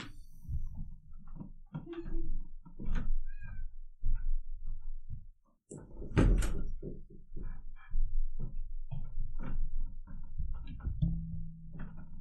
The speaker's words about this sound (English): my cat is meowing at me. My cat had six kittens recently, and her bed is in my office, and so I need to get her out because she wants to leave the room.